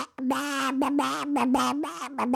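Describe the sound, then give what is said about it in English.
A person imitates a duck, making a buzzy, raspy quacking voice in a rapid run of about five choppy, nasal bursts, fairly loud. “Come on, you can do a better duck.”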